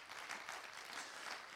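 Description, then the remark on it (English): An audience gives a hand clap of praise to God, clapping together in a steady, dense wash of applause, many hands blending into continuous crackling noise at an even, moderate loudness with no voices. “Does anybody have a hand clap of praise for the God that's got you going?”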